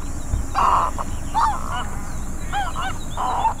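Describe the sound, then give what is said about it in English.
A feeding snowy egret gives four harsh, raspy croaking calls in irregular bursts over a steady low rumble of background noise with no talking. “Or if they're feeding.”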